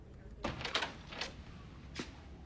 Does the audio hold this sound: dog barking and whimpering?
no